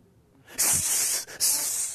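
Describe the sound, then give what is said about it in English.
A person imitates a snake's hiss: two loud, sustained hisses, separated by a brief pause for breath, with no talking. “and its subjects would begin to prophesy, and their prophesying would express itself phenotypically by hissing and coiling like a snake.”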